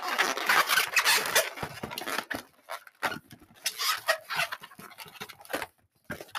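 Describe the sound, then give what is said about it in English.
A balloon is twisted into a dog-like balloon animal with a horse head, with squeaky, rubbery rubbing and creaking, loud and dense at first, then breaking into shorter intermittent squeaks and scrapes with brief pauses between. “So it's pretty much a dog balloon.”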